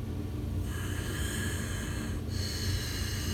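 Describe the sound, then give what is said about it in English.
A person demonstrating a breathing technique breathes forcefully and noisily, with a steady rushing exhale that shifts briefly near the start and again past the midpoint, continuing without any talking. “So the next couple of breathing techniques, some of these I've talked about already. So the first one is where you go.”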